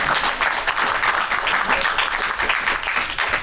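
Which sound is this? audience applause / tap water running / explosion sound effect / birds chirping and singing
audience applause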